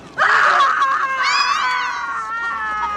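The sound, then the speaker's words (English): One long, shrill, terrified scream, loud, rising and wavering in pitch before slowly trailing off, heard on its own without any talking. “And then they scream, and … in particular lets out this just horrified, just the most terrified scream I've ever heard in my life.”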